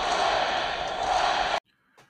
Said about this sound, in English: Here goes the crowd. They just needed something to believe in. And sometimes it's just one swing of the bat that can ignite a team and ignite a crowd.